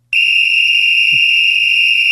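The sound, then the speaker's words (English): A single long, shrill end-of-game whistle blast starts abruptly and holds steady at full loudness for about two seconds, piercing, with no voices. “That's the end of game whistle.”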